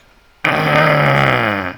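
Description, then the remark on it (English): A voice imitates a long, strained grunt as comic-strip onomatopoeia for Little Tater straining in his high chair: one sustained, low, rough, buzzing effort sound that starts abruptly after a short silence and holds steady for over a second. “And you can see he's straining. His eyes are closed. He's obviously trying to do something, and got a little onomatopoeia here, which I love in comic strips, so here you go.”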